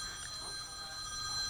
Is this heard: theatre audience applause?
no